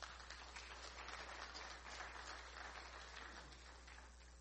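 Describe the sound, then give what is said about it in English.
A large church audience applauds steadily for several seconds after a prayer, giving the Lord a round of applause, a dense, continuous wash of many hands clapping that holds at full strength before easing slightly toward the end, with no voices over it. “And everybody said, why don't you give the Lord a good round of applause?”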